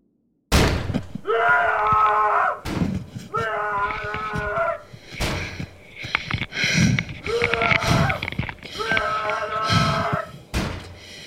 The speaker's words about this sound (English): It is 2:37 in the morning. I'm in my hotel room and woke up to someone banging on the door and shouting my name.